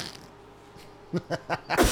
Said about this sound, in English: Oh, dude. That stink like a real fart? That was just your breath and a whoopee cushion.